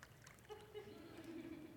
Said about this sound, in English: So I'm going to take this little bag. I'm going to take this bag, open it up, and I'm going to fill it with some water.